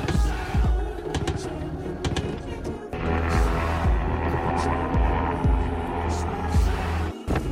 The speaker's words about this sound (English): And the helicopter.